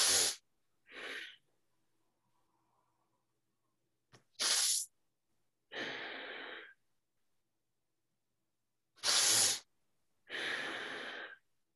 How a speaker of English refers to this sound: Normally, if you are breathing really powerful like this, like 9, 10 times, you start feel hot, you know?